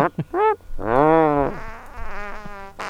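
A string of comic fart sound effects: two quick short toots, then a long wavering buzzy one, followed by several raspier sputters, loud with no talking.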